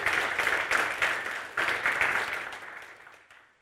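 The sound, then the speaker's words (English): A crowd breaks into steady applause for Pastor Vicky, a dense, bright patter of many hands clapping at once that holds strong for a few seconds before thinning out and fading away. “And last week, I just want to applaud Pastor Vicky for doing such a great, great job, okay?”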